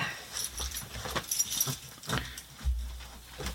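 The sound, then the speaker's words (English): House keys with store loyalty cards attached jangle and clink in a series of bright, irregular bursts as they are emptied from a pocket, with a low rumble underneath. “I have a blue lighter. My house keys, yeah, which also have a my CEX card, my Tesco's club card”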